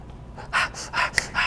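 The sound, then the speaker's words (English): Heavy, rhythmic breaths, about five sharp huffs in quick succession, a wordless breathing ad-lib used in rapping. “We create like breathing and rapping like that.”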